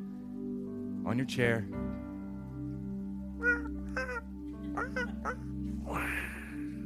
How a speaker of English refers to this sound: The waves and the birds, if you don't know what that is.